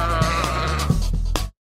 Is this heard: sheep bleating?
yes